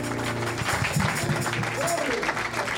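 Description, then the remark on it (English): A church audience claps steadily throughout as a clap offering to the Lord, a dense, sustained wash of applause, with voices and a faint tonal murmur mixed underneath. “Let's get the Lord a clap offering.”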